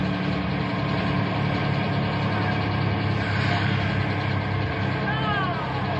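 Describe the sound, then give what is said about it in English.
A school bus engine idles steadily with a deep, constant rumble throughout, loud, with faint murmuring voices in the background as boys board the bus. “No talking until the bus gets going, so we know that everyone has a seat.”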